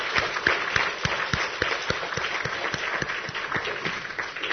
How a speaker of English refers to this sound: They sounded very good. Let's give them another hand of applause.